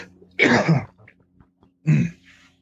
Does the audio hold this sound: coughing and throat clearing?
yes